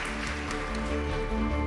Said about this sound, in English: Could you please join me in giving a huge round of applause